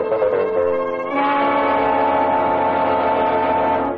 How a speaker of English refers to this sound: A train running express to the Bronx,